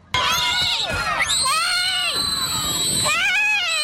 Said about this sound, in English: You can hear the terrified screams of the elementary school students as the bus driver drives away.